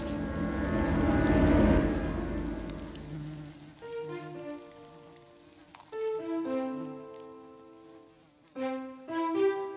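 buzzing swarm of wasps

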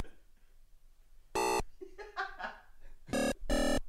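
phone ringing tone

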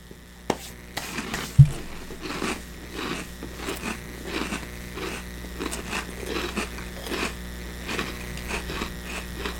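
chewing crunchy cinnamon cereal

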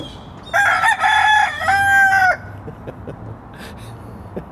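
rooster crowing

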